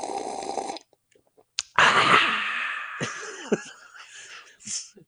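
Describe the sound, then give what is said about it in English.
A voice imitates a dad's loud coffee slurp, the way he took every sip of coffee: a short airy intake, a brief pause, then a long harsh, hissing slurp that sputters off in a few wet bursts. No talking. “every Sunday, and of course multiple times, because he took every sip of coffee that way.”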